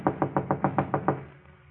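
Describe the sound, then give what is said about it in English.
A rapid series of about eight firm knocks on an apartment door at night, evenly spaced, fading into quiet afterward. “Then on the next night, a knock at Gloria's apartment door.”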